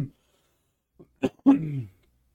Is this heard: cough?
yes